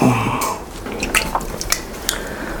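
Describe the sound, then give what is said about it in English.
Water trickles and drips, with a handful of irregular small splashes and plinks over a quiet background, no voices present. “Well, there's my water.”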